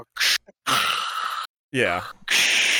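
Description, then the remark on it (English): A voice imitates the heavy breathing of a respirator: several loud, hissing inhales and exhales, one carrying a raspy voiced groan, separated by brief silences. “We have sound machines and respirators. It's great. It blocks out all the sound. Yeah. It sounds like the vent ward at the hospital.”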